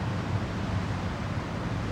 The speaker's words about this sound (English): I feel the sun kissing my skin, and I see the waves crashing against the shore.